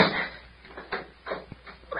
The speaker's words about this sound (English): Well, first climb up and close the cabin door and lock it.